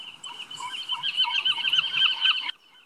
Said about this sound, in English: That's one of my favorite sounds, seagulls. Yeah, it's a special sound. To me, living in the Maritime provinces, it's like really cold here right now. And so that sound reminds me of our happy days here, which is summer, beach, sailboat, all of it.